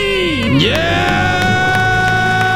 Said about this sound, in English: Yeah! Oh, yeah. He got through the earphones. He's screaming. That's so fun. Well done. Hopefully, hopefully we don't have any permanent damage there. That's his debt-free scream.